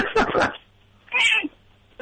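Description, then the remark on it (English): A cat meows twice, a short harsh cry followed by a higher, drawn-out one, fairly loud, with a quiet pause between them and another sound starting at the very end. “All right, your cat's All right, we got it.”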